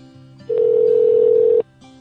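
telephone ringing

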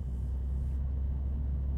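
car interior road noise

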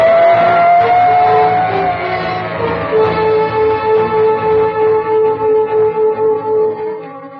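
ambulance siren

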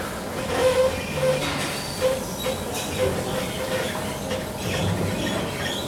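tram running on rails

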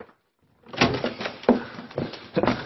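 door being opened

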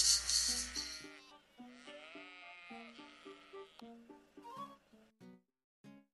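sheep bleating

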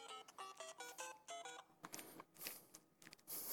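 mobile phone ringing

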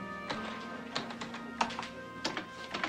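typing on a keyboard

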